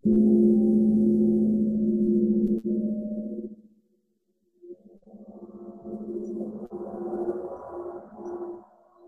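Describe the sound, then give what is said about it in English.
A wind gong played with a mallet hums with a deep, sustained metallic drone that fades out, pauses briefly, then swells back with a wavering, whooshing shimmer, the wind effect made by moving and swinging. No one speaks. “So this is called wind gong, because you can produce this type of effect with moving, swinging, and you can create this wind.”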